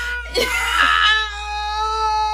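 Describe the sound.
A loud, frustrated wail of a woman lying on the ground, screaming like a toddler in a tantrum, starting with a sharp outburst and then stretching into a long, sustained, tearful cry that carries on to the end.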